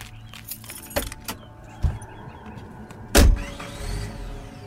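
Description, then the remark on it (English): Keys jingle and a few clicks and knocks lead up to a car door slamming shut with a heavy thud outside a mart, followed by a low engine rumble as the car starts and drives off. “As I drove off, I could see multiple people outside on their phones.”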